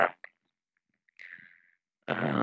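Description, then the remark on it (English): A short, raspy throat-clearing rasp after a brief breathy sound, then a louder, buzzing voiced burst as the throat, scratchy from pollen allergies, is cleared again. No words are spoken. “Gotta clear my throat.”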